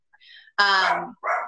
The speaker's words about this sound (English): I'm sorry, the dog is still barking and I don't know how loud it is, but it's annoying.